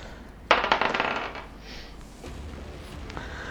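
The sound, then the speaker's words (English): Dice, rolled for two attacks in a tabletop game, clatter onto a hard surface with a sharp first hit and a quick run of bright rattling clicks that fade within a second, followed by quiet background hum and no speech. “Roll your two attacks there.”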